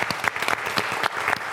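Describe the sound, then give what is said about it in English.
An audience claps steadily, a dense wash of many hands applauding together, fairly loud and sustained throughout without any talking. “Can you give Sasha a round of applause?”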